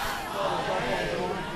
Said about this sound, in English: Dozens of protesters on the front lines are wearing masks. But there's more and more people getting in front of cameras without masks and screaming, "Marg bar Khamenei, death to Khamenei." It's the ultimate insult.